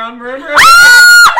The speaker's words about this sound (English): Stop yelling. No, I have a question. I'm so loud. Sorry.